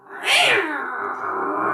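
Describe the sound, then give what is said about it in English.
A person voices a loud, drawn-out angry cat yowl, rising sharply into a high screech and then holding a strained, wavering growl to the end. No other talk is heard. “That's like a that really good impression of a cat.”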